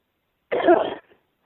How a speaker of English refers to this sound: Excuse me for the cough, but this took him 20 minutes with a Google machine.